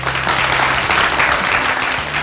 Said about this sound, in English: So can we please have a big round of applause